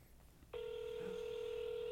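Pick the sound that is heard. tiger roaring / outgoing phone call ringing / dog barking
outgoing phone call ringing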